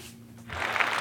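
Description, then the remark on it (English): Quiet for a moment, then a short, fairly loud burst of hand clapping given as a mock standing ovation fills the second half, a rapid, steady patter with no voices over it. “Why'd you clap, fucking asshole? I was letting them hear it. That's the standing ovation.”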